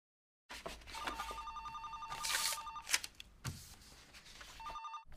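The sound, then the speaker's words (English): The personal phone of the President of the United States rings with a bright, buzzing electronic trill, one long ring followed by a pause and the start of a second, amid faint background clatter and no talking. “You've reached the personal phone of the President of the United States.”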